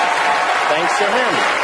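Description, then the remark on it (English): A large audience applauds loudly and steadily, a dense wash of clapping, while a voice speaks faintly underneath, following a host's joke thanking the president. “Massive thundering applause.”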